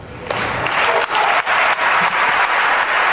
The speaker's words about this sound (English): It was almost like out of a movie, because she walks up as they're applauding and then he finishes his last two lines